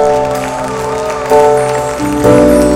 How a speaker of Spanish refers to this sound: ¿Alguien puede dar un aplauso al que vive?